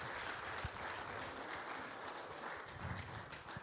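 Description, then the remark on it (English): A steady round of audience applause thanking the speakers at the close of a set of talks, dense clapping from many hands at an even level throughout, with no voices standing out. “But I want to thank each of you, and yeah, if maybe a round of applause, I think it would be.”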